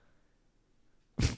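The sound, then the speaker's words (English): A single sudden, loud sneeze bursts out close to the microphone after a stretch of near silence, sharp and breathy, and cuts off almost immediately. “Well, like, no, when you did your sneeze, you said, I do.”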